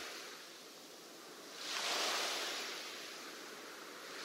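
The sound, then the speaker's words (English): Steady ocean surf hisses softly, with one wave swelling and washing in around the middle before easing back into a continuous wash of water. No one speaks. “The soundscape is waves.”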